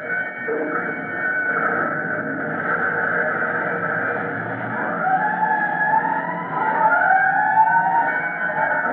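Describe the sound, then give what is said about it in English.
A fire chief's car speeds to a fire with its siren wailing, the pitch sweeping up and down over a steady, loud engine rumble that continues throughout without any voices. “A matter of four blocks and less than that in minutes before the chief's car rolls up in front of a three-story building where smoke seems to be coming from an opening in the roof.”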